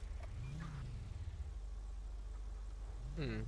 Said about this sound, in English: Hmm. What? I just heard that car start up.